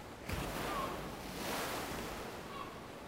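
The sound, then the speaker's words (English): Ocean waves break out at sea and wash continuously, a broad hissing roar that swells twice before easing back, heard fairly quietly with no voices. “Sets her gaze on the waves breaking out at sea and can only think.”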